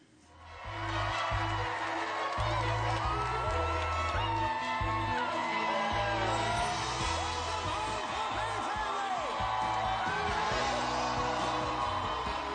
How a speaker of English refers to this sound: Seeing people there and all cheering, you knew that everyone had a connection to your story.